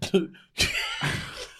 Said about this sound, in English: Is you coughing over there? Is you coughing over there?